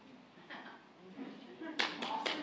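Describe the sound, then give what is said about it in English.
Brief applause from a church audience breaks out partway through, a short burst of clapping that rises quickly after a quieter stretch with faint voices in the room. “I was standing here till you clap.”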